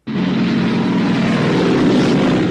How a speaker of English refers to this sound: German planes that just come in on multiple strafing runs. We all duck down. The room's getting shot to pieces.